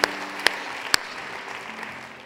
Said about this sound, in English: Can we put our hands together and welcome first-time guests?